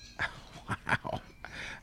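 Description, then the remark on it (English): A dog named Chop gives a few short, whiny vocal bursts, rising and falling in quick succession, ending with a longer drawn-out whimper-like sound. “I didn't say it. The dog said it.”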